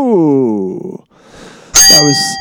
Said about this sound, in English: There is an early bell. That is the bell of Mr. Michael Bell of the internet.